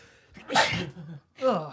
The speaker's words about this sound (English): Bless you. It's Corona time!